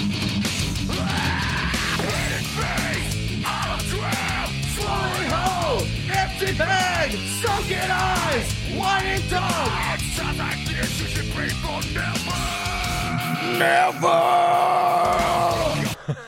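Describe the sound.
A person imitates harsh, screamed heavy metal vocals, loud and raspy, delivered in rhythmic shouted bursts over a dense, continuous wall of sound for about sixteen seconds.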